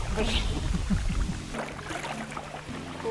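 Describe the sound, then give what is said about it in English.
Water splashes and sloshes as a kayak paddle works through it on a pond about 3 feet deep, with irregular wet bursts over a low rumble and faint voices talking in the background. “Plenty of splashing going on in the background.”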